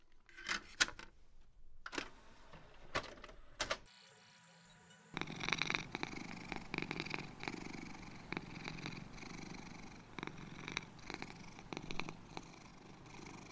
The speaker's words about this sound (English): Carol, did you bring that Bengal cat purring CD?